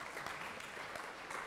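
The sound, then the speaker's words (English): A lecture audience breaks into a round of applause for a student remembering the answer, backward induction, a dense, steady patter of many hands clapping at an even level throughout, with no voices standing out. “Round of applause for remembering the answer.”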